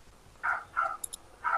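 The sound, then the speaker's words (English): A dog makes three short, mid-pitched whining yips, evenly spaced, with two tiny high clicks between the last two. There is no talking. “Whose dog is that?”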